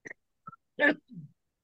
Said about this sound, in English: Sorry for the cough.